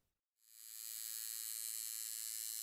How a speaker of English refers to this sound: He started up the tattoo gun, buzzing like a big angry hornet, and in the black lines went, long like needle-thin stitches.